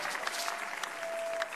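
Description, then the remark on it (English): A church audience gives a mighty clap unto the Lord, clapping together in a dense, steady burst of applause, loud and continuous with scattered sharper claps and a faint high tone running underneath. “Give a mighty clap unto the Lord.”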